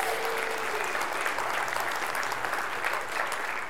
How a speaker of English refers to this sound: Let's give him a round of applause as they go.